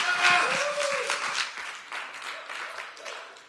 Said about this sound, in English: You could give her a round of applause today.